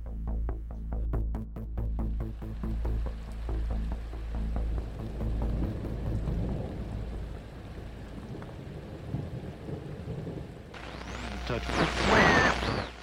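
rain falling

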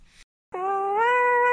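cat meowing

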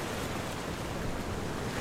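ocean waves

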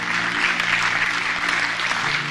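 audience clapping

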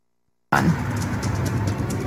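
car driving

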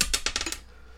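dice being rolled

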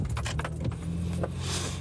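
keys jangling

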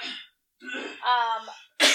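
coughing

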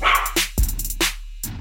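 dog barking

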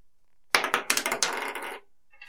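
dice being rolled

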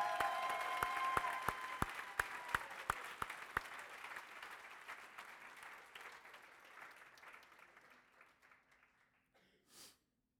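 audience applause

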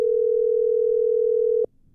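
whatsApp call ringing tone

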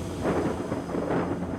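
thunder sound effect

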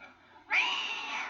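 cat meowing

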